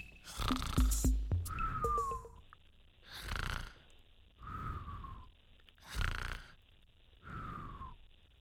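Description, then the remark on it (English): Repeated snoring in a steady rhythm: raspy, rumbling inhales alternate with softer, falling whistle-like exhales, with a short pause between each breath and no talking. “Hey, that's a Triskelion of snores here on the Triskelion, the Purica podcast.”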